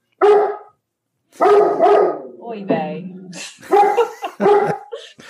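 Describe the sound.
A dog named Juno lets out several loud, sharp barks in uneven bursts, with short pauses between them, in response to a knock on the door, while a person briefly speaks over the barking.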